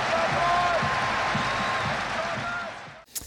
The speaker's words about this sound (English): Just amazing, and just the crowd noise, the absolute euphoria in that crowd of what they were witnessing.